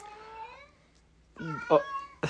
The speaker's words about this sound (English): if you guys hear my cat, she's got her little mouse